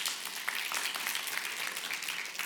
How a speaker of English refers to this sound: Are we going to clap another time when I say it in Spanish? No, just kidding.